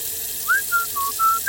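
A person whistles a short, bright tune of four clear notes at sunset, one slurring upward, each held briefly with small gaps between, alone with no talking.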